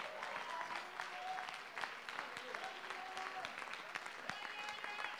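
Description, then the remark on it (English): A church audience claps steadily to give praise to God, a dense wash of overlapping hand claps, with faint voices and tonal cries rising above the sustained applause throughout. “Oh, somebody clap your hands and give God all the praise you can.”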